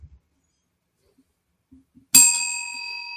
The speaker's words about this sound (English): A light bell. Light bell. It's a light bell.